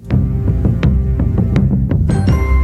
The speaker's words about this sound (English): So, you know, you have these kind of tribal drum beats that are kind of mimicking almost like a heartbeat with these beautiful little simple piano notes.